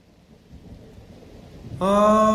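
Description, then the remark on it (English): Steady rain hiss with a low rumble of thunder for nearly two seconds, then loud sustained musical tones abruptly come in over the storm. “I told you it was going to rain.”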